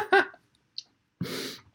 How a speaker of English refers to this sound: Can you stop sneezing, please? I don't know if I can.